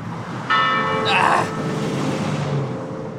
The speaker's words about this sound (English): I'm walking away from the church bell.